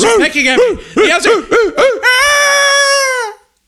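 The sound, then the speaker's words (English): A voice imitates owls, giving a run of quick rising-and-falling hoots followed by one long, high, wavering hoot that trails off. Fairly loud, with no other sounds. “The owls are pecking at me.”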